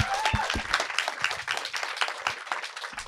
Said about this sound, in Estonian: Teeme aplausi sellele meili. Väga hea meilile.